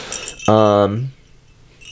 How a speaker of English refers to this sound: So if you're just an audio listener, it's a silver bell. There's some stars and snowflakes also cut in it. And we have that sound. Mm-hmm. I thought it sounded pretty.